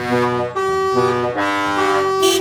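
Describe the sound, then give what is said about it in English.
Loud vehicle horns blare almost without a break, overlapping blasts shifting between a few flat, brassy pitches over a couple of seconds, with no one speaking. “It was exuding negative vibes by emitting a cluster of monotonous brown goose-like honking sounds that made modern jazz sound good.”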